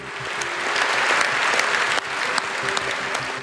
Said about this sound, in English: Those parliamentarians gave him a lengthy round of applause.